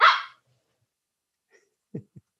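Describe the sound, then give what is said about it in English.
A puppy sitting on a chair lets out one sharp bark, then after a stretch of quiet gives two short, softer low woofs in quick succession; no one speaks. “You might have noticed that there's a dog here.”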